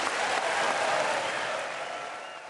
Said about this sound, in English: After a long applause, Herzog added